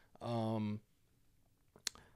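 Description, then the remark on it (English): A sustained voiced throat sound lasting about half a second, followed after a pause by a single sharp click made with the throat. No one speaks. “I do this clicking noise with my throat because I'm very anxious.”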